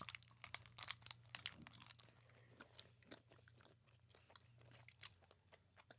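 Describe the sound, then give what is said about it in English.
Steady chewing of dark chocolate, with soft wet smacks and small clicks in an irregular rhythm, no one speaking, over a faint low hum. “It's kind of like the other one. Mm-hmm. Without the crunchy stuff. But it's dark. I like the dark chocolate more.”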